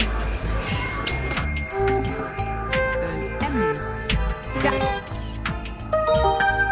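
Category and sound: signal or alarm, phone ringing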